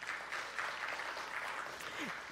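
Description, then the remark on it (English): An audience claps steadily for a couple of seconds, a dense, even patter of many hands at moderate loudness, with a faint murmur of voices underneath, clapping to show they bought a group lottery ticket. “Clap if you bought a group lottery ticket.”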